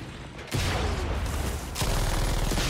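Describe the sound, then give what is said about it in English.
A loud, booming grenade explosion from video game combat, caused by a player shooting the grenade out of the air, with rapid gunfire rattling out in a dense, steady stream that swells again near the end. No one speaks. “Shoots the grenade out of the air. That's what makes the explosion.”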